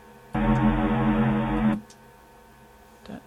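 A dense, washy reverb trail from a Mood guitar pedal with mega reverb and trails left on swells in loudly and hangs as a sustained shimmering drone for over a second before cutting off abruptly, followed by quiet background noise.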